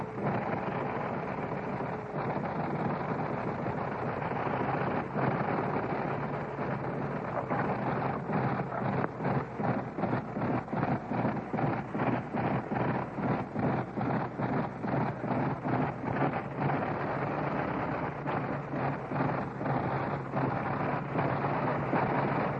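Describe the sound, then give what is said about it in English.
A big 425-horsepower Liberty aircraft engine runs loud as it starts and warms up, a deep, steady roar with a rapid, throbbing beat of firing pulses that carries on throughout. No one speaks. “I'm going to let you turn up your gain, turn up your receiver gain, and you can hear the sound of these 425 horses on this great Liberty engine.”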